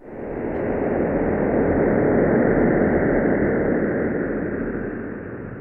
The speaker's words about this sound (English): And there was a sonification, turning the image the EHT collected into sound. I want to play a selection of that and have you tell us what we're hearing.